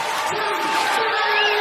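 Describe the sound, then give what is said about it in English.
Crowd noise played from a YouTube recording: a dense, steady wash of many overlapping voices blurring into a constant murmur. It stays at an even, moderate loudness throughout, with no single voice standing out. “Yeah, it's like just the crowd.”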